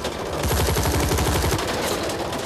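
Sustained gunfire rattles on without a break, a rapid, steady stream of sharp shots at a loud, even level for the whole stretch.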